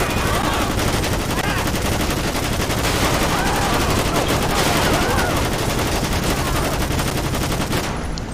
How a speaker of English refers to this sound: Oh snap, got shots. We got shots fired. Shots fired. Shots fired, watch out.